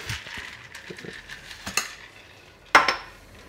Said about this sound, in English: A couple cubes for serving. Okay, a couple cubes of ice into the glasses.